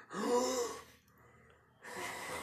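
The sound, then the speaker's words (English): A person voices two heavy, labored breaths, a long raspy inhale-exhale, a brief pause, then another drawn-out breath, mimicking strained breathing. “You hear some labored breathing, like.”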